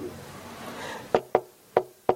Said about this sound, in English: she had a very distinct way of knocking the door, the same way Khadija used to knock a door